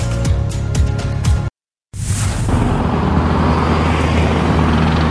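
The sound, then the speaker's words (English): An RCMP police helicopter's rotor thumps in a steady pulse, cuts out briefly, then returns as a loud continuous engine roar with a high whine, overhead, deployed at about 10 at night helping Vancouver police disperse a large crowd on the beach at English Bay. No one speaks. “The RCMP's Air One helicopter was deployed at about 10 o'clock last night, helping Vancouver police to disperse a large group of people who had gathered on the beach at English Bay.”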